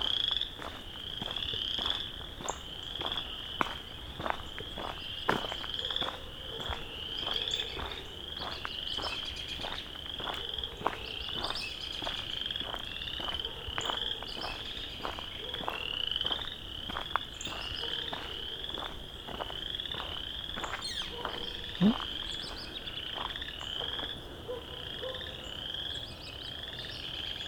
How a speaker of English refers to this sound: And here's some good chorus frogs.